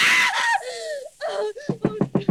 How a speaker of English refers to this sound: What on earth is wrong? Why were you screaming?